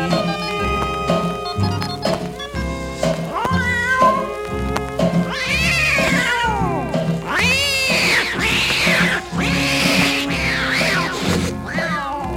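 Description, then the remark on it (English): Drawn-out, wavering cat yowls and screeches rise and fall in a series of loud cries as an old tomcat starts a fight, layered over steady backing music with a thumping beat. “Now on that very same night, now that old tomcat started a fight, and this is the way it all did sound to me.”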